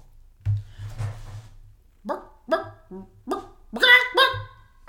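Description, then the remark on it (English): A person imitates a chicken with a string of about six short, throaty clucks that grow louder, ending in a stretched, higher squawk, after a few low thumps at the start. “Okay, number 2. This one's stupid. A chicken.”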